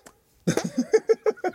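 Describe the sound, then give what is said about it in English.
A voice imitates a fart with a rapid run of about seven short, buzzy sputtering bursts in a steady rhythm, fairly loud, after a brief quiet start. “He's in on the fart game.”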